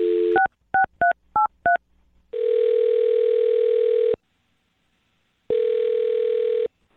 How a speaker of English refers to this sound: All right, I'm going to dial her phone number right now and see if we can figure out what went wrong, okay?